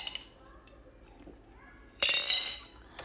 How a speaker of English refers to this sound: Did you hear my metal straw? Because I am a beautiful queen that cares about the environment.